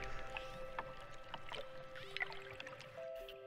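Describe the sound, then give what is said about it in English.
A pair of trained dolphins chatter underwater while coordinating to perform tricks in unison, recorded with a hydrophone: steady tonal whistles shifting in pitch over a rapid scatter of sharp clicks, moderately loud, with no voices present. “Camera and hydrophone in hand, he watches as the pair chatter and click, and then move as one.”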